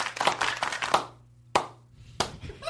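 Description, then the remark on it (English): A single person clapping: a quick burst of sharp, bright hand claps, then two slower, spaced-out claps. No voices are heard. “Like if I go to a concert, I will applaud till it's obviously it's me.”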